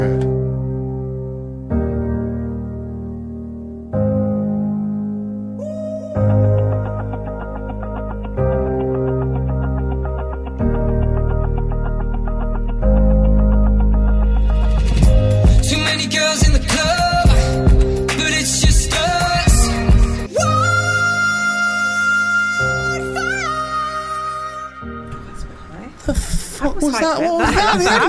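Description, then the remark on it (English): A music track, an unreleased debut single, opens with loud sustained synth chords that change every couple of seconds, then builds midway into a dense, noisy, crashing texture with bright high synth lines over it. “That was …'s track …. Debut single, mate. Not out yet.”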